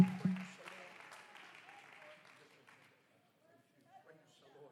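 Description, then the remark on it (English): A church audience bursts into loud clapping during a service, which quickly thins and fades out over a few seconds, leaving near silence with faint murmuring voices. “Clap one more time as you're going down tonight.”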